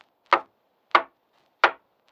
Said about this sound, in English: Maybe the sheriff knows something. I'll knock on this door.